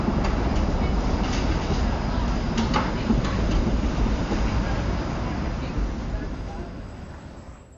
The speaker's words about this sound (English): The streetcar, which has recently been updated to be sleek, longer, and super uncomfortable, passes by my window.